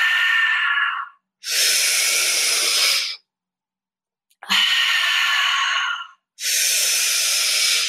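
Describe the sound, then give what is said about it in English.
Four loud, airy, rushing breaths during a breathwork exercise, each lasting a second or two with short silent pauses between, deliberate deep exhales and inhales in a steady rhythm. “Almost done. Last push. Exhale. Exhale.”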